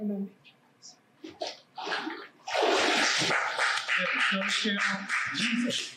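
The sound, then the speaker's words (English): Soft voices murmur, then a person is plunged into water for a baptism by immersion with a loud splash. Heavy sloshing and churning water continue to the end, with faint voices underneath. “Then I baptize you in the name of the Father who loves you, in the name of the Son who gave his life for you, in the name of the Spirit who wishes to live in you.”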